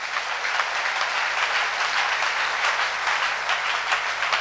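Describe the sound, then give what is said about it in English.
A crowd applauds steadily throughout, dense overlapping claps forming a continuous, fairly loud wash of sound with no voices heard. “Let's give Jesus a clap of him.”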